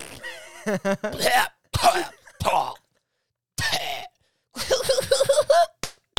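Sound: voice imitating fart noises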